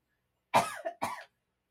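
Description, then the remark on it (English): A sputtering choking cough after swallowing liquid wrong: a harsh burst, a short wheezy catch, then a second strong cough, loud and raspy, with no talking. “Swallowed my liquid wrong.”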